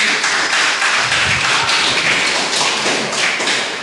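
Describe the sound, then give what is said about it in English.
A church audience applauds: a dense wash of clapping, loud and steady throughout with no voices on top, fading slightly at the very end. “So let's give them a round of applause, because a lot of work.”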